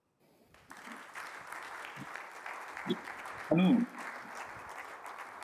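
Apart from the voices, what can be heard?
audience applause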